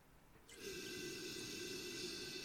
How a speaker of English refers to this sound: Cabernet Franc is a type of red grape varietal, so it is a red wine, and it's related to the more famous Cabernet Sauvignon. All right, now let's give it a little sniff.